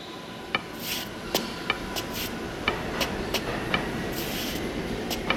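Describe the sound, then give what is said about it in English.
A subway train rumbles steadily along the tracks, with sharp metallic clicks at irregular intervals and brief high-pitched squeals of wheels on rail, loud throughout. “Stop the train!”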